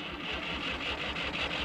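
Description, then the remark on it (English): A big red tractor's engine starting up via a key fob, settling into a steady, rapid mechanical chugging with a rattly, buzzing texture, heard on its own without any voices. “Oh my God, it turned on.”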